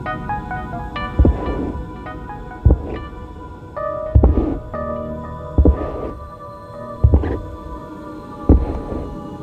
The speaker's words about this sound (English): It was a thick sound, like footsteps, but heavier.